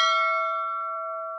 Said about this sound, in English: did you hear the bells? Yes, I did. Well, that signifies it's time to wrap the show.